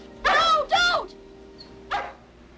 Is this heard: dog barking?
yes